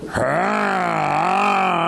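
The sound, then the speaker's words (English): A loud, drawn-out voiced groan imitating a heavy snore, one continuous rumbling tone held for about two seconds, with no other sounds around it. “Because all these years, no one ever snored in your room. All of a sudden you come and there's a truck in the bedroom.”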